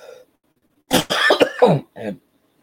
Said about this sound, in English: and of course, as all, and ladies and gentlemen, please excuse, of course, the coughing.